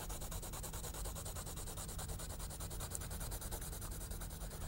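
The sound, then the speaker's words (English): Pencil shading on paper, going back over squares in a different direction with the same pencil to build up light, medium and dark tone: a steady, soft scratchy rubbing of quick, evenly repeated back-and-forth strokes, continuing without pause at a low, constant level with no voices. “And I'll go over the third one at the same time, because this last one will have at least three weights of pencil tone.”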